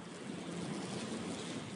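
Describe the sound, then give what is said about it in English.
A steady, blustery roar of stormy wind fills the short stretch, dense and unbroken, with a low rumbling undertone and no voices. “Are the ewes lambing in this storm?”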